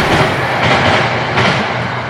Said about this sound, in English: Is that a train? Yeah. It is a train.